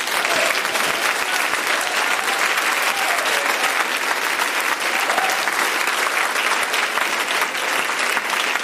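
An audience claps their hands in a steady, dense burst of applause that holds loud and even throughout, many overlapping claps blending into a continuous rush with no speech standing out.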